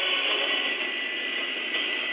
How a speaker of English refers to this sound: The planes are scrambling.